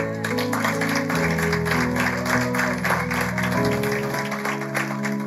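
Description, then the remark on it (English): An audience claps during a sermon about Jesus rising from the dead, a dense, continuous patter of many hands for several seconds, while sustained keyboard chords shift underneath. “Somebody should clap for that.”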